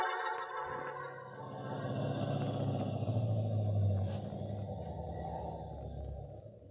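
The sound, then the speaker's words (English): A car engine rumbles low and steady as the car drives and then stops, swelling a little in the middle before easing off slightly toward the end, with no one speaking. “Hey, there's a car stopped back there where you just stopped.”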